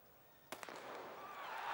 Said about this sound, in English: That's like, that sound effect is a shooting.